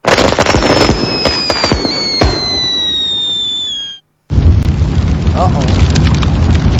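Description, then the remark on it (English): Loud holiday fireworks: whistling rockets glide downward over a barrage of sharp pops and bangs, then after a brief silence a dense, continuous crackling of bursts fills the air. “During the holiday fireworks, our barn has caught fire.”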